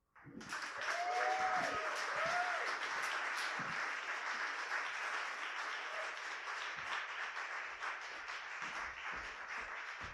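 Steady crowd applause fills the whole stretch, a dense wash of clapping that starts abruptly and holds at an even level, with a brief whoop or cheer rising early on.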